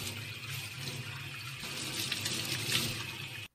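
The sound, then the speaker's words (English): Water runs steadily from a tap into a sink, a continuous hiss and splash that holds at an even level for a few seconds before cutting off. No one speaks. “You could actually take one in your sink if you want.”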